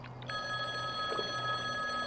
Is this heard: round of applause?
no